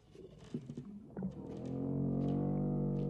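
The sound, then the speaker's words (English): A strange, eerie low sound effect made by combining a voice with a tuba: a groaning voice-like warble gives way to a long, swelling brassy drone, deep and whale-like, rising in loudness and sustained to the end. “Strange and scary sound. It's a combination of a verbal thing. We use musical instruments.”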